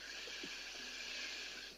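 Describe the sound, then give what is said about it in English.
A slow, deep breath drawn in during a guided breathing exercise, heard as a soft, steady airy hiss lasting under two seconds, quiet, with no talking over it. “Breathing in.”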